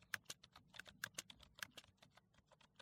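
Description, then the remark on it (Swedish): Rapid clicking of keys on a computer keyboard, a quick irregular run of sharp taps, steady for a few seconds with no voices. “Någon skriver på ett tangentbord.”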